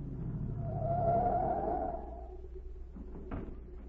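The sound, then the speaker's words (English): A car engine hums and swells as the vehicle pulls up at the watchman's gate and settles, then a single solid car door thunks shut near the end as Agent Z steps out. “A minute later, a car pulled up at the watchman's gate, and Agent Z stepped out.”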